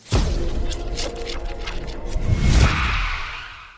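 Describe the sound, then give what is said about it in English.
A large crowd at a dance show performance in New York City in 1960 claps and roars in a dense, continuous wash of applause, loud, swelling slightly past the midpoint with a deep rumbling undertone before easing off at the end. “Look at that huge crowd. I know my jazz hands were good, but I don't think they're applauding for me.”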